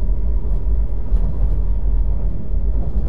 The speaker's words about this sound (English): As the train jerked and trembled its way free of the cloying mire of Gwynedd County